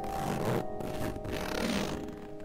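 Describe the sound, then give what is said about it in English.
The zipper of a blue vinyl tent's hatch is pulled open in a few raspy strokes with brief pauses between them, moderately quiet, over a faint steady hum. “The pressed palm led its way down toward the first zipper and began to pull the hatch open.”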